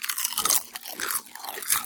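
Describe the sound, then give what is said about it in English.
Turkey, ham and stuffing flavoured crisps being bitten and crunched, a run of dense, bright crackling bursts with no voices, the brittle snaps coming in quick irregular clusters before easing into softer chewing. “Right, let's have a eat. Let's have a taste.”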